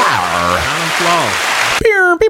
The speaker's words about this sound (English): Let's get out a round of applause.